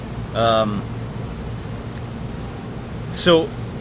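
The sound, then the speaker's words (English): An air conditioner runs with a steady, fairly loud low hum and airy hiss throughout, while two brief bursts of human voice rise over it near the start and end. “Hey, wow, the air conditioner just shut off. Now we can hear again.”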